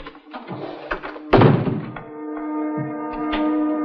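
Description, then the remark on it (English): A door swings shut with a single solid thunk, preceded by faint shuffling and knocks and followed by a steady sustained humming tone. “We close the door and turn out the light?”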